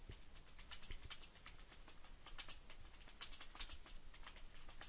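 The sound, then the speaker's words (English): Rapid, uneven computer keyboard clicks patter continuously as someone types a message, the soft tapping fairly quiet, with no voices over it. “Let me type in the message here.”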